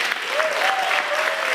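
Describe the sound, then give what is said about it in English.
Steady, dense applause from students at the University of North Florida, a continuous wash of many hands clapping at even loudness, with a faint tonal whistle or cheer threading through it. “Let's give yourselves another round of applause.”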